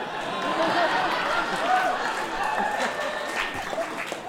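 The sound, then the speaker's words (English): A crowd claps steadily for several seconds, a dense, even patter of many hands with some voices mixed in, holding at a fairly constant level before easing slightly toward the end. “I'm angry that that got applause.”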